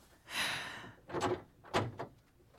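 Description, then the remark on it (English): A door swings open with a soft whooshing scrape, then bumps shut with a couple of dull thuds and a rattle, fairly quiet, with no one talking. “The door.”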